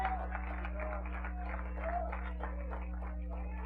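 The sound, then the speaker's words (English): A church audience claps hands in praise of God in a steady, continuous burst of applause, with scattered voices calling out underneath and a constant low electrical hum. “Give God a hand clap of praise in this church.”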